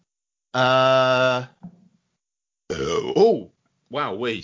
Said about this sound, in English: That snuck up on you, didn't it? That was a very, very surprised burp. My apologies. Oh, dear. Ever so sorry.